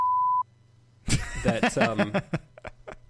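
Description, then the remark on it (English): A loud, steady censor bleep tone lasts under half a second, covering a word in the title of an Agatha Christie book, followed by a brief low hum and then a voice talking, with a few soft clicks at the end. “you're going to have to beep this.”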